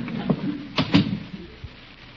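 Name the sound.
door opening and closing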